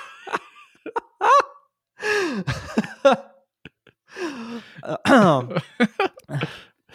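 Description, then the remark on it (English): A bout of coughing and throat clearing, short harsh bursts broken by gasping, strained breaths over several seconds, with no talking. “Coughs.”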